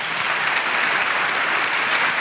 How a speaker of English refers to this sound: And we need to give them an applause. Would you people stand? They're right here on the first row, early.